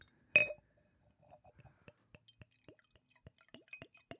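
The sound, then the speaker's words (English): A single bright, ringing glass clink, followed by water being tipped out down someone's lap in a quick, irregular run of small splashes, drips and plops that grows busier toward the end. “You just tip water all down his lap.”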